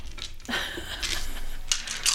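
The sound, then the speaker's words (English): Dice clatter and tumble across a hard tabletop in a quick run of bright, rattling clicks, fairly loud, with no talking over them. “I don't have enough dice.”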